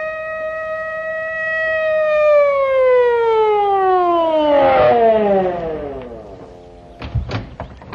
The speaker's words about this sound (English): Just a minute, Judge. Here comes a police car.